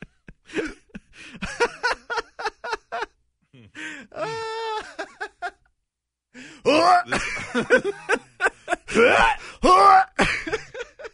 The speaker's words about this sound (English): The hiccups.